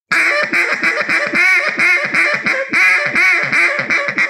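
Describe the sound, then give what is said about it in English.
A duck call blows a fast, bouncing run of hiccup-like hen quacks, a hiccup or Cajun squeal style bouncing hen call, loud, roughly a dozen clipped notes rolling together in a steady rhythm with no talking. “I'll do that on like a hiccup call, but kind of like Cajun squeal, whatever you want to call it, bouncing hen.”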